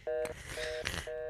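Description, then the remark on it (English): Three short, steady electronic telephone tones at a regular pace, separated by brief bursts of clattery handling noise, fairly loud, with no talking. It is a corded telephone being handled. “is holding an actual phone with an actual cord, which some of you may remember.”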